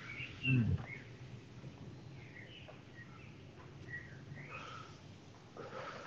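Birds sing outdoors in scattered, high chirps and short trills, fairly faint, over a steady low background rumble with a brief low thump near the start.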